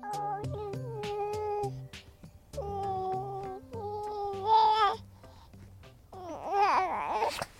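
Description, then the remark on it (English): A teething baby boy, curious and becoming talkative, babbles in a run of drawn-out, sing-song coos and squeals that rise and fall in pitch, with short pauses between phrases and a higher, wavering burst toward the end. “who is currently teething. And he's really curious and becoming quite talkative now.”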